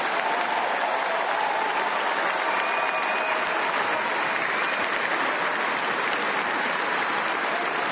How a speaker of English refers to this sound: I think everyone needs to give her a round of applause because she's played like 5 matches in 3 days.